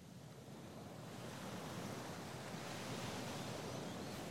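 Steady surf washes in with a broad, hissing roar that swells slightly partway through, waves breaking continuously on a shore with a faint wind-like rush and no voices.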